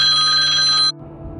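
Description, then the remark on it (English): A telephone rings loudly with a bright, steady electronic trill for nearly a second, then cuts off abruptly, leaving a low background hum. “My apologies, by the way, for you hearing that ringing noise,”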